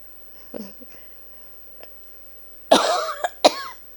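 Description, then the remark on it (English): A few faint throaty sounds give way to a loud, harsh cough burst, followed by two more sharp coughs, with no talking in between. “Well, now it's coming coughing again.”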